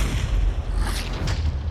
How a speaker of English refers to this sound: A shot rings out, and a musket ball strikes a tree in front of him, severing one of its limbs.